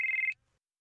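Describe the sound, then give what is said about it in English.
A phone rings for an incoming call from Wolf: a single short, high-pitched electronic trill lasting about a third of a second, fluttering rapidly, then cutting off into silence with no voices. “Wolf's calling.”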